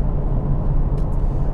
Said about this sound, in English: As we pass some big rig Trucker Alex trucks.